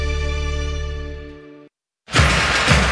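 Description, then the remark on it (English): A sustained musical tone fades out, a brief silence follows, then a loud crash of windshield glass shattering, with scattering noise lasting to the end. “This Buckeye season, don't let a broken windshield ruin your game plan.”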